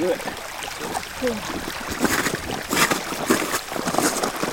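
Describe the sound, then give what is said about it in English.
Rushing water on the Greenland Ice Sheet, recorded while standing on the ice, roars steadily, a dense, continuous hiss with irregular surges and splashy bursts, plus a faint tonal murmur briefly near the start. “Is that a rushing river? A waterfall? Yeah, kind of. It's a sound that I recorded standing on a massive piece of ice.”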